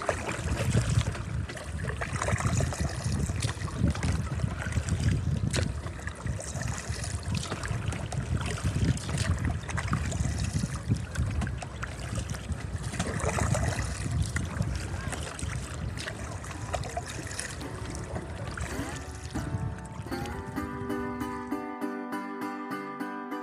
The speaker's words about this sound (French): Bon, chose première, chose due, je vais essayer de vous faire écouter le bruit de la pagaie. Let's go.